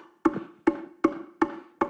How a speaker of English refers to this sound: The Bible says he put his head between his knees and he began to knock.